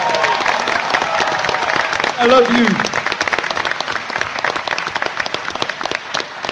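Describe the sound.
An audience breaks into sustained applause, dense clapping filling the whole stretch, with a brief shouted voice rising above the crowd partway through.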